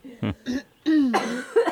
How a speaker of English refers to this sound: Cough. No, dry cough.